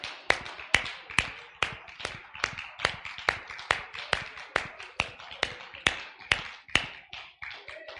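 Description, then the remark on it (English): A group claps hands in steady unison, about two sharp claps per second throughout, with faint sustained voices or music humming underneath, as people make their way back to their seats during a worship service. “Let's clap our hands as you make your way back to your seats.”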